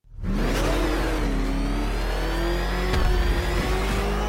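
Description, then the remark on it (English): The Batmobile's car engine revs up and holds a loud, steady roar, its pitch climbing slightly as it accelerates, with a brief surge about three seconds in, played as a sound effect. No one speaks. “It's a Batmobile.”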